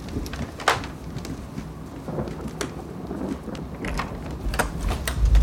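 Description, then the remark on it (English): Steady rain hisses throughout, with scattered sharp crackles, while a deep rumble of thunder swells louder near the end. No one speaks. “Sorry, the thunder and that swarm of bats startled me a little bit.”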